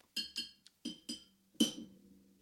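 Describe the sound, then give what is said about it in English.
Glass bottles are tapped together in a quick uneven series of bright clinks, about six strikes with ringing high tones, the last one loudest and lingering briefly before fading; the hitting makes the drink inside fizz up. “You don't have to hit the glass every time. That's just making it fizz up.”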